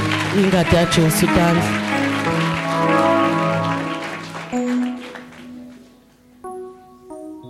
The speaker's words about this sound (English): Clap your hands for the blood of Jesus.